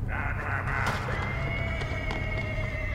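A horse neighs in a long, wavering whinny that stretches across a few seconds, over a steady low rumble of background noise.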